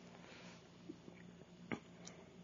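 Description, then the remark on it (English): Quiet chewing with a few sharp, crisp crunches breaking through at irregular moments as someone eats breadsticks, over a steady low hum and no talking. “can you hear the crunching over through the crunching of your breadsticks?”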